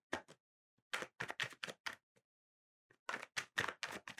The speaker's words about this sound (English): This is great for the listening audience. I know, a little ASMR for you. Some ASMR. Just shuffling cards now.